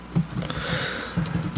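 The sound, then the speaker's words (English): Rapid, uneven clicking of keyboards being typed on, a steady clatter of keystrokes at moderate volume with no voices, like several people typing at once. “Oh, the amount of people typing.”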